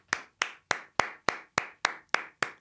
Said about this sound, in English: Round of applause for that lady.